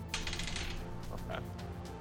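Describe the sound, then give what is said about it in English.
Dice clatter across a table in a quick burst of rattling clicks, then settle with a few scattered taps. The sound is fairly faint and no one speaks. “Those are the dice. You might want to just re-roll that.”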